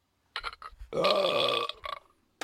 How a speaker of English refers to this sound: And I have to burp. Can I just burp on the show? I'd rather not.